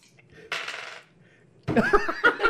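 A short burst of five dice tumbling across a tabletop for a knowledge roll, followed by a brighter rattling flurry with quick clicks as they settle, fairly loud.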